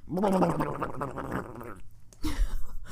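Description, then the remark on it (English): A person does a jowl-shaking impression: a rough, gargling growl with their voice, wobbling and flapping as if shaking loose cheeks, with a Nixon-like growling flavor, followed by a brief breathy burst; fairly loud. “Ooh, you got a little Nixon flavor on it with the sort of growling.”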